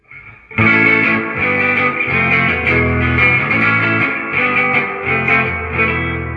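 An electric guitar through a Deluxe Reverb amp plays loud, full chords with a deep, rich low end, starting after a brief quiet moment and ringing on steadily without any talking.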